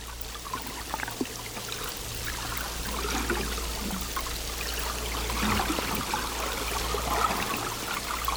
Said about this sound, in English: There is like a fog of sound because the water was quite turbulent. I remember that day. It was the second day. It was not long before we had to leave because the sea got too rough. And so there was a lot of sound to listen to.